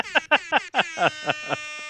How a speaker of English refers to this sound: I have the rap air horn on my phone.